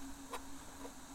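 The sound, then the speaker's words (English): A wind burner camp stove hisses steadily with a low, constant hum under it, with a faint tick and soft bubbling pops as water heats to brew coffee at Mountain Lake, in the mountain's shade on the south shore. No one speaks. “We've got a wind burner stove”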